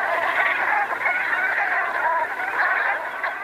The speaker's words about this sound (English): But they have a very characteristic call, and this very often, this is what will alert you to the fact that they're flying over. You'll hear their gaggling call.